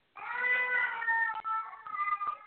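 A cat lets out a long, drawn-out meow lasting over two seconds, its pitch wavering and straining like a plaintive, wailing cry, fairly loud with no talking over it.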